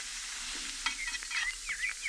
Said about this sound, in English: Boy, those hamburgers look good. I'm starved, honey. How long do I have to listen to them sizzling there on the griddle? Take it easy, darling. All in good time. I'll just turn it over.